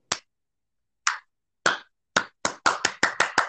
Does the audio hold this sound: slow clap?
yes